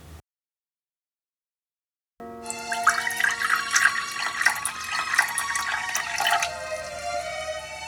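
After a couple of seconds of silence, coffee pours steadily into a cup beside a Christmas tree in the living room of a student home in Ottawa, a bright gurgling stream whose pitch rises as the cup fills, then tapers off into a soft trickle.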